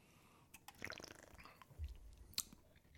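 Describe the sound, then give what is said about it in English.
Quiet mouth sounds of someone sipping a blue raspberry flavored drink, with a wet slurp near the start, a low gulp midway and a sharp little click toward the end; no talking. “Okay, I'll take a sip.”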